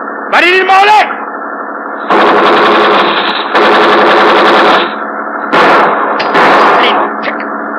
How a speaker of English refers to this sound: We fire in front of him. That's slowing him down.